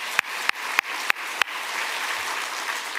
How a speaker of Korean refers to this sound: 그러면 우리가 하나님 앞에 영광의 박수 올려드리고 좀 시작하면 좋겠어요. 한번 박수 올려드릴까요?